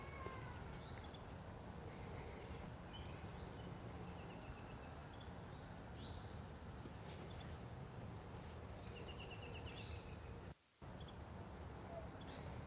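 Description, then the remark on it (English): Scattered bird chirps and short whistled calls ring out over a steady outdoor hiss of wind through the trees, with no one speaking; the calls come and go. “Those birds are beautiful.”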